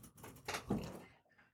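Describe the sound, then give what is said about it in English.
A noisy chair creaks and shifts, a short scraping rasp that swells into a low thud-like groan before trailing off, fairly quiet and with no voices. “I can hear you. It's a noisy chair.”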